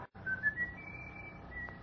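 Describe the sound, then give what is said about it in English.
A person whistles a long, steady, high note that wavers slightly in pitch over a low background hum, with no talking. “But after the doors opened, I noticed that the whistling stopped like being cut in two by a knife.”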